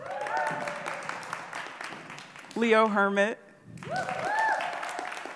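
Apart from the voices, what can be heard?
audience applause and cheering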